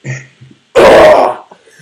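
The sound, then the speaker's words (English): A single loud, rough throat clear, a harsh half-second burst preceded by a brief low vocal murmur and followed by a quieter trailing breath. “Sorry, I clear my throat.”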